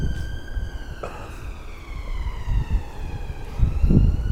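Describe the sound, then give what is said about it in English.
Police car sirens wail outside, their rising and falling tones sweeping steadily over low, gusty wind rumble, with no voices. “I love how, as I say that about a terrible man, fucking sirens in the background.”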